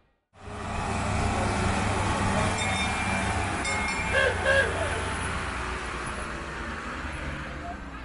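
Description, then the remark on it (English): A small tourist train running from Jerusalem's Jaffa Gate through the old city down to the Western Wall rumbles steadily along, its low engine drone continuous, with a brief metallic clinking partway through and faint voices in the background. “We're on the little train that goes from Jerusalem's Jaffa Gate and weaves through the sacred old city down to the Western Wall to pray.”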